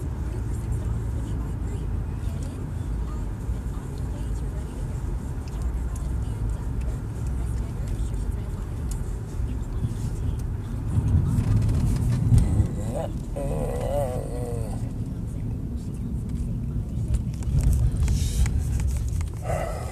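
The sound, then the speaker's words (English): A heavy bus engine rumbles steadily, its deep drone swelling louder midway and again near the end as it drives past, with faint indistinct voices underneath. “It's a big bus.”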